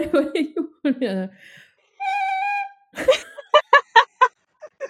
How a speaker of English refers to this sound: What would you like the sound to be? You should do the whistle. Oh, the whistle? Yeah. Okay.